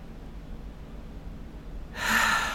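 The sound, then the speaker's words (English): After a couple of seconds of near silence, someone draws in one really deep, slow, audible breath, a loud airy rush that continues to the end. “So my go-to in that moment is to take a really deep, slow breath.”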